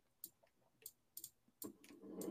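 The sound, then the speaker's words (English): Several soft, irregularly spaced clicks and key presses on a computer keyboard, using keyboard shortcuts to copy and paste, quiet, ending with a louder burst of rustling noise. “Using keyboard shortcuts?”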